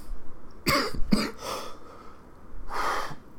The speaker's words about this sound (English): I managed to stifle the cough for most of the show.